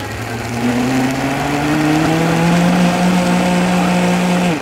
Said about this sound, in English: And so here we turned it into a milkshake, which we call a batido. Typically, it's not a milkshake. We just put it all into a blender and created this.